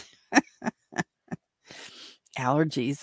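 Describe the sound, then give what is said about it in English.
Four short, sharp coughs in a steady row, then a breathy inhale that turns into a long, drawn-out voiced yawn with a wavering, sliding pitch, put down to allergies and sleepiness. “Okay, yawning and coughing.”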